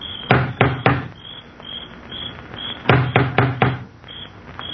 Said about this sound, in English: An elderly man gets out and walks up the wide stone steps to the front door. He looks about uneasily, then lifts the huge knocker on the door.